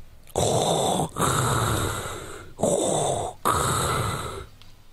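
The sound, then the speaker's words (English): Someone in Seattle takes a hit from a bowl of keef: four long, loud, raspy inhales in quick succession, each separated by a brief pause, with no talking. “Hit it. Hit that shit.”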